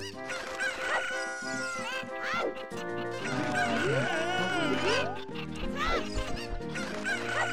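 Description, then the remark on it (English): Video game chickens cluck and squawk several times in quick, rising and falling calls as the player picks them up and throws them, loud over a dense, continuous backdrop of bright electronic game music. “And you're just picking up chickens. You're throwing chickens.”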